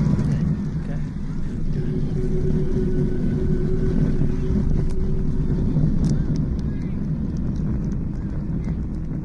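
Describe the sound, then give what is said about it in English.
A rocket's main engines roar at launch, a steady, heavy, rumbling blast that stays loud and continuous throughout with a gritty, crackling texture. “We have a go for main engine start. We have main engine start.”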